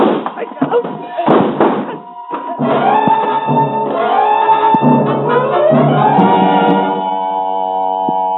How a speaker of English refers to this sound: There was a split second of confusion, but a split second can be the difference between life and death. I threw myself at Blake, slamming my shoulder into his chest, and we crashed to the floor.